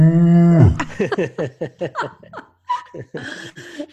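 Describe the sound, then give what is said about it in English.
A person lets out a loud, drawn-out imitation of a cow's moo that drops in pitch, as the punchline of an interrupting cow knock-knock joke, followed by a run of rhythmic bursts of laughter. “Knock, knock. Who's there? Interrupting cow.”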